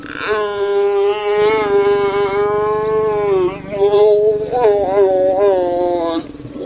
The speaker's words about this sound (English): Okay, we're back to the animal sex. I'll tell you what they are as we go along. This is a lion first.